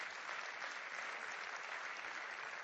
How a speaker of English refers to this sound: Yes, round of applause, yeah.